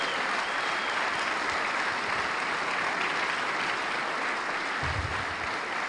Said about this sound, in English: As God is good, and all the time, if you believe it, then give God a hand clap of praise right now.